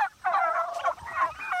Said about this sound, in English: And then there's another set of turkeys right over the knoll right down there. So there's two sets of 400 and some turkeys here in two sets. Aren't they beautiful?